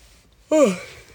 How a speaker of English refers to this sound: Sorry. Well, I shouldn't say sorry, but that yawn is my burnout yawn.